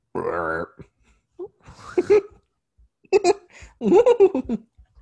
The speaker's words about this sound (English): Sorry, I keep burping. Is it a burp? Is it vomit? I don't know.